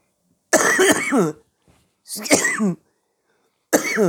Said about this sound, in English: Yeah, and I just coughed the microphone right off.